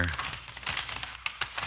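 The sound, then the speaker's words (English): An envelope being torn open: a rapid crackle of ripping paper followed by a few sharp, separate tears, with a brief murmur of a voice at the very start. “All right, you go ahead and open it up.”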